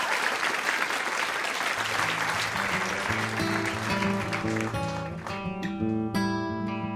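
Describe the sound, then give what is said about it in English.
The Ask Me Another audience applauds NPR's Stephen Thompson and Ian MacKaye with steady, dense clapping that carries through the whole clip. After a couple of seconds, sustained musical notes come in underneath and grow more prominent as the applause continues. “One more round of applause for NPR Stephen Thompson and Ian MacKaye.”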